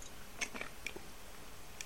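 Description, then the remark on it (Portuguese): Someone quietly sips water: a few faint, wet mouth clicks and small swallowing sounds scattered irregularly over a low hiss, with no talking. “Um momentinho, vou tomar um colinho de água.”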